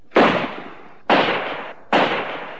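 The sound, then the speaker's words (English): Three gunshots fired by a soldier at people getting into a mobile crane ring out one after another, each a sharp loud crack followed by a rumbling tail that fades over about half a second, with slightly uneven gaps between them. “It was when we got into the mobile crane that the first shot was fired.”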